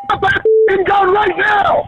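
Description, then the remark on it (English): A car's door-open indicator chimes once, a short, steady electronic tone in an officer's vehicle, heard in the background of a 911 call in a brief gap between stretches of a man's talking. “That's why you hear that dinging of the door open indicator in the background.”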